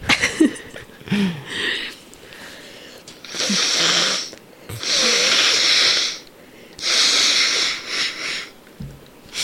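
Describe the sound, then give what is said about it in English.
Someone blows their nose three times in a row, each a loud, breathy honk lasting about a second, with brief pauses between. A few soft murmurs and sniffs come before the blows. “Well, let me take a break for a second. I'll try to blow my nose.”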